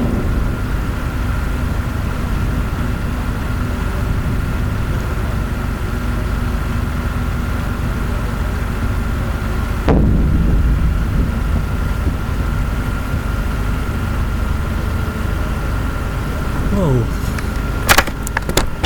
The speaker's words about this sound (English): This is so loud. We are under attack. We can hear the explosions and shelling very loud. I can't see the shells.